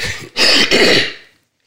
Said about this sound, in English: Let me clear my throat.